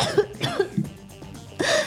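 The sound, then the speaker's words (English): A person imitates a violent coughing fit of a character who convulses and coughs out a big glob of blood: several harsh, throaty hacks in quick succession, ending in a rough, drawn-out heave. “She convulses in Boomer's arms, who is holding her steadfast, and coughs out a big glob of blood as she takes 4 physical damage.”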